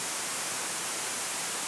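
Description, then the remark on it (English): Steady, unbroken hiss of white noise spread evenly across the whole range, like a white noise machine running at a constant moderate level with no voices or changes. “I even, when I go on missions trips or out of town or I'm at man's camp, I bring a white noise maker.”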